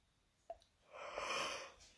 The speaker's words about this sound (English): What the hell? See, it's not even... I yawn again.